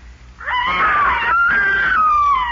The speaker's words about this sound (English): What? It's the same scream. That's ….